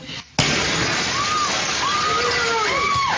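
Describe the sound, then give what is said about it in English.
A sudden loud crash as a deer smashes through a hair salon window and runs through the shop, followed by a steady wash of noisy clatter and commotion with faint voices calling out underneath. “Yeah, here's the deer going through the window into the hair salon.”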